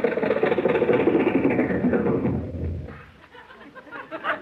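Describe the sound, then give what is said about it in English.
A Lincoln car driven into a studio idles with a steady, rough rumble, then winds down and cuts off after a couple of seconds, leaving quieter background noise. “Boss, the gateman let us drive right into the studio with the car.”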